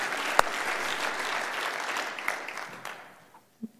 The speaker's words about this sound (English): If you believe that, clap your hands to the Lord.